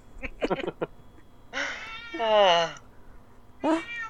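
A cat meows, one long drawn-out wavering meow followed by a shorter one, after a few quick clicking sounds at the start.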